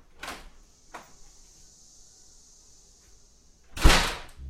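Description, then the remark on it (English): A door is pulled shut, ending in a loud thud after a couple of lighter knocks and a long, thin high-pitched hiss or squeak while it moves. “Let's lock this door.”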